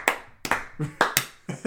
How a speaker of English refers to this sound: Clap your hands to the beat.